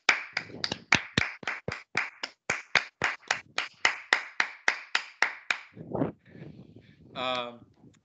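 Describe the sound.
Steady applause from what sounds like one or two pairs of hands: about twenty crisp, evenly spaced claps over five seconds, then brief voices after the clapping stops.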